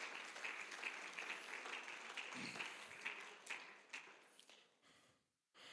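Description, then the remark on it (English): A crowd claps their hands to the Lord in a dense, rapid patter of many hands, loud and steady before thinning out and stopping abruptly near the end. “Clap your hands to the Lord if you believe that.”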